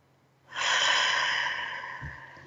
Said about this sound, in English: And let's take a deep breath in through the nose, out through the mouth, like through a straw. Great. Sometimes we're not breathing fully. We get so busy. Take another breath.